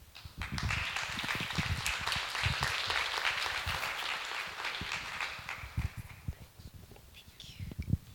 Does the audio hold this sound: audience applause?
yes